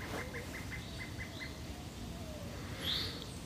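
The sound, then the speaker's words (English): A pileated woodpecker, a large bird, calls a quick run of about seven evenly spaced, loud notes in a backyard, heard from a screened-in back porch, then falls quiet. Another bird's brief chirp follows, all over a steady outdoor background rumble. “That is a pileated woodpecker.”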